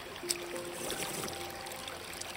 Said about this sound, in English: Gabe was the first among us to sample the water, discarding his gear and pressing his lips directly to the stream.